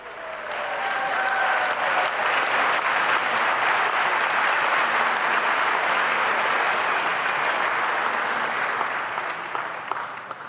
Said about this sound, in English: That's the first time I've ever heard an audience clap just when the speaker walks in.